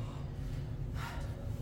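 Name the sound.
person yawning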